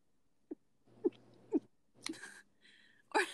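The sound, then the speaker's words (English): A voice imitates a sneeze held in to avoid sneezing in front of someone: three short, muffled squeaky puffs at a steady pace, then a breathy hissing burst and one last sharper snort. “I don't sneeze in front of him.”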